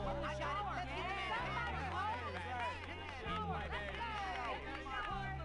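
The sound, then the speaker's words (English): A dense crowd hubbub of many overlapping voices chattering at once, steady and fairly loud throughout, with no single speaker standing out. “Hey, that takes care of the crowd.”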